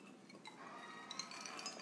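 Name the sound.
glasses clinking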